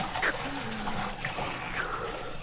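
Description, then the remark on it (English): A fish is put into a pail of water with a brief watery plop, followed by soft sloshing and dribbling, muffled, with a faint voice-like murmur underneath. “Sure, but if you want me to speak, put me in a pail of water.”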